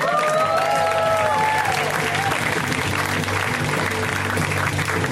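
An audience breaks into sustained applause and cheering, a dense wash of clapping with a few high whoops rising over it at the start, steady and loud throughout.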